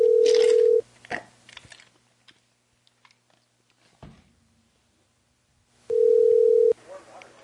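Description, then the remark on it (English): A phone call to a McDonald's restaurant rings out with two long, steady ringback tones several seconds apart, with faint clicks and line hiss in the quiet gap between them. “Call back.”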